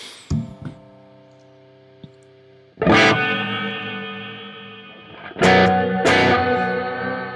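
Buzzy synthesizer notes with the chorus modulation turned up and the waveform knob around 2 o'clock: a short stab, then three loud sustained tones swelling in one after another, each rich in bright harmonics and slowly fading, with no voices.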